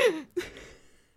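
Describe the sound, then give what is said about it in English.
A voice mimics hiccups with two quick, sharp gasping catches of breath, the second following a brief pause and trailing off into a soft breathy fade. Fairly loud. “Because it's just like you can't stop yourself from going like,”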